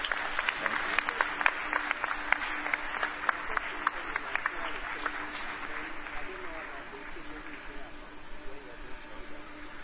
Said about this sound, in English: Clap for me now.